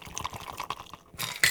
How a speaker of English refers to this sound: Now, strain the contents of your cocktail shaker over into the wine glass.